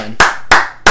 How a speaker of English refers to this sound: What we would like to, of course, start off with, as we often have, is a huge thank you to our fans that have given us support. Give yourselves a round of applause. Yeah. Clap. Yeah.